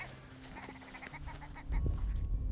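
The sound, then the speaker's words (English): A grouse gives a rapid run of short, nasal cackling notes in a steady stuttering rhythm, then falls silent as a low rumbling noise rises underneath. “Oh, there goes another grouse.”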